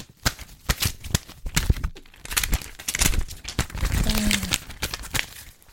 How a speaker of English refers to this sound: I shall now play the piece of paper.